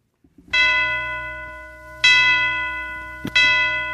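Three bright chiming bell strikes open a Christmas blues song, each ringing out and slowly fading before the next, over a soft low hum, with no voices.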